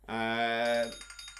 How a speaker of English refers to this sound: Oh, I hate that bell. You just get in a roll and just comes and sucks your soul straight out.